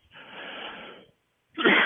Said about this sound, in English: Excuse me. I'd like to cough that one away.